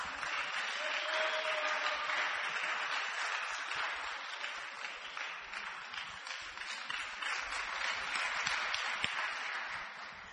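A crowd breaks into sustained applause as a man comes up to share his testimony, dense overlapping claps holding at a steady, fairly loud level for about ten seconds with no speech on top.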